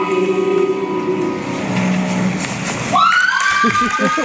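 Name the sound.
excited crowd cheering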